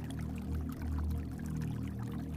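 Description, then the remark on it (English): A stream flowing steadily, a continuous gurgling rush with a deep low rumble underneath and no voices. “The current massages the soles of your feet, and pulsing water slips between your toes, as if preparing them for the walk ahead.”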